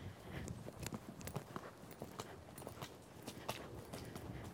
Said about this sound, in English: Okay, with these young horses, I like to take a minute to set up the canter. I want to make sure that their hip is a little to the inside, so it's natural for them to pick up the canter, so I push his hip in.